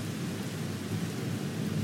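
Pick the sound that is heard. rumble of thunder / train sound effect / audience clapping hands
rumble of thunder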